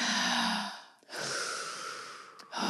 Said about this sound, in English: We're going to do a quick breathing exercise to close off the day. We're going to breathe in through our nose for 10 seconds. 10 seconds? Maybe, no, 10's a bit fucking long. Wait. Three. Maybe three. In for three, out for three.